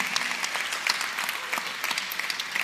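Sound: audience applauding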